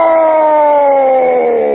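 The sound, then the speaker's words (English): A caller to a live stream screams, a loud, sustained scream held for nearly two seconds, its high pitch steady with a slight downward slide and a siren-like tone. No other sounds or talk accompany it. “Anyway, here's my scream.”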